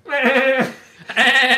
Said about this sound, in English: what's your machine gun noise? Like a sheep, like a laughing sheep. Yeah. Well, goat versus sheep.